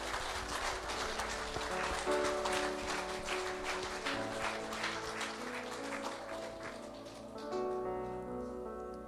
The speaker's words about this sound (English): Why don't we just give a round of applause for that? That's a great step of faith.